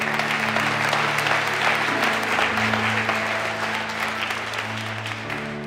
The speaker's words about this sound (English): Let's give Pastor Angel a round of applause.